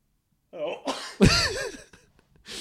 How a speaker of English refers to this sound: I have to sneeze. Is that okay? No.